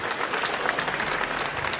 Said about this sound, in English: No, don't clap.